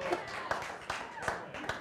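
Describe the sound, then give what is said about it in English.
Sparse hand clapping, about five sharp claps at a slow, steady rhythm, moderately loud over a faint background murmur. “Should have been more clapping for that, men.”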